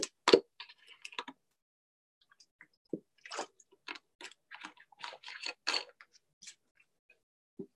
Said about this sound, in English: And let me take a quick drink of water real quick.